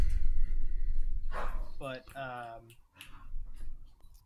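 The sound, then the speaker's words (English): A dog trying to attack a cat gives a couple of high-pitched barks and a drawn-out yelping whine midway through, over steady low background rumble, with faint clicking around it. “Sorry, our dog is trying to attack our cat.”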